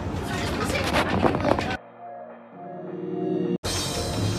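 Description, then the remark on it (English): Inside a moving OC Transpo city bus at Billings Bridge: a broad roar of road and engine noise, easing into a steady low droning hum mid-clip before the rushing noise swells again, with faint background chatter. “I'm gonna see what kind of people get on the bus here.”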